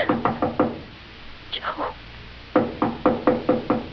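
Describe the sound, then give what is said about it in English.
Loud knocking on a door in two rapid bursts, about five firm raps, a short pause with a brief muffled voice, then another quick series of six. “I'll see who it is.”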